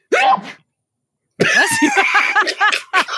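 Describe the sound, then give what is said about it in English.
A single sharp sneeze bursts out, then a second of silence before a stretch of loud, breathy vocal sounds and laughter-like chatter follows. “That was a disheveling sneeze.”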